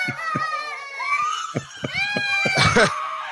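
A crowd of young children at the Little Blessings Child Care Center in Hamilton, Mississippi, shrieking and shouting at once, high piercing squeals layered over each other, loud, with a sharp burst of screaming near the end.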